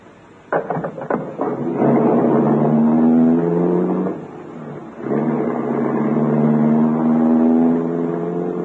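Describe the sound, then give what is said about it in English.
A large limousine pulls off with a few quick clunks and turns away from the main centre of the city, then its engine hums steadily, briefly easing off as it shifts gear before droning on again. No one speaks. “He turned the car away from the main center of the city, and we drove for a while in complete silence.”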